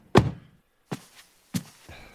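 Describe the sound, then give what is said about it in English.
A car door thunks shut several times in quick succession as someone gets out of the car: one heavy slam followed by two sharper thuds and a softer knock, with brief silences between. “What are you doing getting out of the car?”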